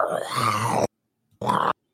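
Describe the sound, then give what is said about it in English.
A voice imitates the growling water effect from a film, where the CGI ocean water comes at a ship: a loud, rough, throaty roar lasting nearly a second, a pause, then a shorter guttural burst, with another starting at the end. “What the hell was up with making the water growl?”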